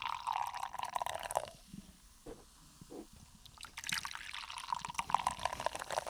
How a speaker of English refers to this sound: This does not sound like a beer getting poured. That one did.